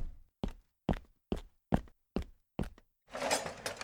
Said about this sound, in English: Thank goodness the knocking stopped. I guess they went away.